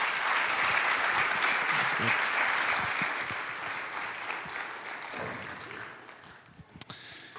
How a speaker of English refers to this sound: And so if you guys would just give them a round of applause.